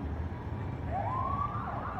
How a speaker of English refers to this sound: You can hear the sirens behind them.